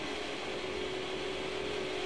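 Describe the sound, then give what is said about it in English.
A drill runs steadily without pause just outside, behind a wall, giving a continuous mechanical whir with a constant mid-pitched hum over a broad grinding noise. It stays at an even, moderate level, and no one speaks. “So what's even going, like, what is this drilling for?”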